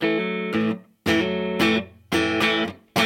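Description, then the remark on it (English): An electric guitar played through a DiMarzio PAF humbucker pickup in the neck position strums a repeating pattern of full, ringing chords in short bursts with brief gaps, moderately loud, with no one talking. “In the neck, this is a DiMarzio PAF.”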